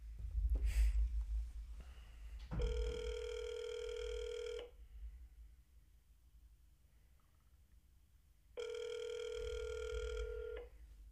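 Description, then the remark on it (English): Two long electronic ringback tones of a phone call being placed, each about two seconds of steady buzzing pitch, separated by a few seconds of quiet line hiss, with a brief click and rustle at the start. “Okay, I'm gonna try to fucking call him again.”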